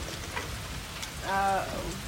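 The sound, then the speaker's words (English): Natural steady rain hisses throughout, a dense wash of falling drops, with thunder faintly in the background and a brief tonal, humming sound rising over it midway. “And now we got rain sounds and thunder in the back.”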